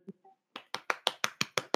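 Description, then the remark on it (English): A brief applause effect: about eight sharp, bright claps in a quick, even rhythm, preceded by two soft, brief blips. No one speaks. “It insert random applause.”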